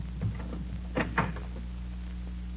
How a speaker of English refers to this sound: Just a moment, my friend. Don't open that door. Please.